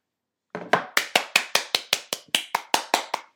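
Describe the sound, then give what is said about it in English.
A single person claps hands in a quick, steady run of about fourteen sharp, crisp claps, each a bright smack with a short decay, with no talking. “I got to clap about good that.”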